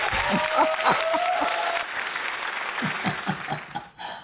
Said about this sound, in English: I think you deserve you deserve another round of applause.